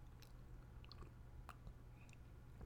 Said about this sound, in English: Excuse me here while I take a sip of my coffee.